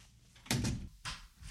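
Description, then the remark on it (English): Two or three dull, heavy knocks on a wooden door, fairly loud, spaced about half a second apart with no voices. “I think, is knocking on the door.”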